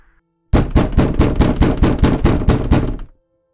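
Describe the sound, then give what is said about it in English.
Loud, rapid banging on a house door by someone breaking in, about a dozen heavy thuds in a fast steady rhythm for nearly three seconds, then sudden quiet. No voices. “The sound of someone banging on the door startled me. It kept getting louder and louder.”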